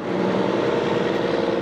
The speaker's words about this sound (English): Dump trucks rumble along East Emma Avenue in downtown Springdale this hot summer morning, providing fuel to construction crews laying the foundations for the new Market Center of the Ozarks.